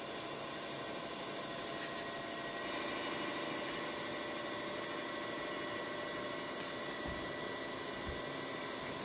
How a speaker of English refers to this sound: Well, what in the hell is that sound? I have no idea. The sewing machine. Why is the sewing machine going?